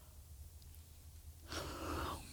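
After a stretch of low background hum, a single yawn comes in: a breathy, drawn-out exhale with a faint voiced tone, lasting under a second before fading.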